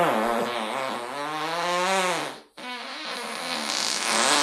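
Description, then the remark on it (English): A long, loud, buzzy fart with a wavering pitch, briefly cutting out midway before a rougher, sputtering continuation, slightly reverberant with a bathroom-like echo. “Maybe that's like bathroom echo.”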